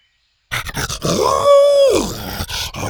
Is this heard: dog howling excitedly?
yes